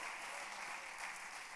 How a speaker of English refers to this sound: If you want the presence of God in your house, somebody clap your hands and praise him that God will come.